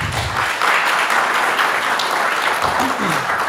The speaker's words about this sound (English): ask that everyone please give a warm round of applause for our panelists.